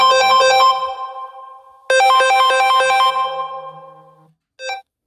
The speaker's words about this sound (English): Sorry, a random phone call interrupted ours.